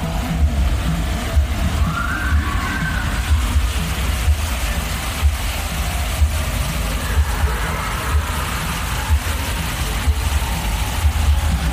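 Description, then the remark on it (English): Theme park bobsled ride ambience at the Matterhorn Mountain ride: a steady, loud wash of rushing water from a waterfall over a deep, continuous mechanical rumble, with a couple of brief faint higher-pitched streaks of screaming rising through the noise. No one speaks. “we just leave people with the sounds of Matterhorn Mountain”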